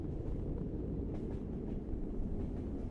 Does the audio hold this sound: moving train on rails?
yes